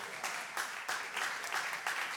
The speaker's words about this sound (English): In Jesus' name, clap your hands unto the Lord.